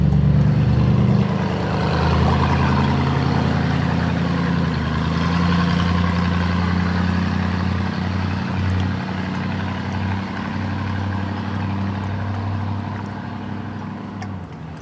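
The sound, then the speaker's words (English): A rally-type car with a big pipe rack carrying spare tires on its roof rumbles steadily and loudly, a deep throaty drone with slight shifts in pitch, holding for the whole stretch with no voices. “Can't tell if it's like a road rally car or was a road rally car or was at one point in its life a stock car racer.”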